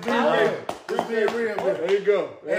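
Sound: hand clapping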